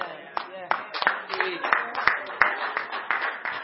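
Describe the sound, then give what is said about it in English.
Sparse, scattered hand clapping from an audience, a few irregular claps rising over a murmuring crowd, weak and unenthusiastic rather than full applause. “Very weak hand clap.”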